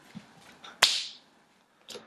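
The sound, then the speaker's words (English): A single loud, sharp slap lands on someone's body and rings off briefly, with a few faint soft shuffles before it and another small rustle at the end; no one speaks. “I should deliver you a slap.”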